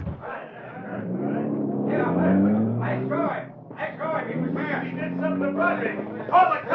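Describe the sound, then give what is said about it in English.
In a Green Hornet drama, a car driven by Cato revs up and pulls away fast, its pitch climbing as it accelerates, then surges again, with people talking over the roar. “Get him into the car. All right, that'll do. Now step on it, Cato.”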